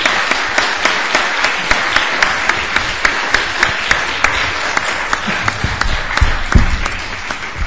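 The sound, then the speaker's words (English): An audience applauds students at the end of a talk, steadily for several seconds: a dense patter of many hands clapping at a constant loudness, with a few sharper individual claps standing out. “So a little applause for our students.”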